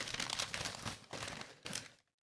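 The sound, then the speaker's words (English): Snowflake-patterned wrapping paper crinkles and rustles in three bursts of bright, crackly noise, each lasting about half a second, then stops abruptly into silence. “Look, nice, pretty snowflake paper.”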